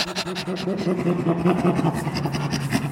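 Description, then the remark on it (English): A voice imitates a chimpanzee's panting laugh: rapid, rhythmic breathy huffs on both the in-breath and out-breath, with a low voiced tone running under the steady, moderately loud bursts. “Chimpanzees, their laugh is on the inhalation and the exhalation, and it's kind of a panting sound.”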